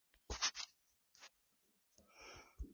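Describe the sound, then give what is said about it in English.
Quiet taps and scratchy brushes of typing a text message on a phone arrive in a few short bursts, ending with a longer hissing swipe and one soft thump. No one speaks. “And I am typing, we are live.”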